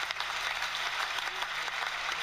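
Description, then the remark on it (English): Sustained audience applause sound effect, a dense steady wash of many hands clapping at once, fairly loud and continuous throughout with no voices on top. “Except that clap went on way too long.”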